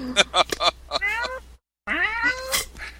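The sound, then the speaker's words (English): An older cat meows insistently, two drawn-out, rising-and-falling cries separated by a brief silence, with some short vocal bursts mixed in at the start. “I'm getting pestered by my older cat, but that's par for the course when I'm talking to myself, so...”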